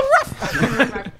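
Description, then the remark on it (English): Several voices blurt out a short, dog-like "ruff" bark imitation at once, fairly loud, followed by scattered chuckles and snickers. “But for the Nintendo, everyone did a ruff at the same time.”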